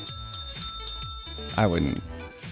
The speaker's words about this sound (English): Oh, did I just hit the bell? I think they hid this. Remember when people would ring this?